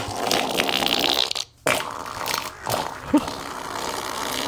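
A long, wet, frothy fart sputters and bubbles, with crackly bursts, a brief pause midway, then continues in a sustained foamy rasp.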